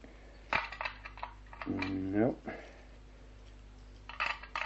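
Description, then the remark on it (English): Metallic jangling and scraping as keys are fumbled and tried one after another in the lock of a barred door to a shuttered room, with a few sharp clicks and a brief low creak midway. “No, these are the only keys”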